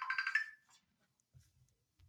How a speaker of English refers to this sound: What was that? That was a video messenger. I'm sorry, guys. Please excuse me. I was like, that's not my timer.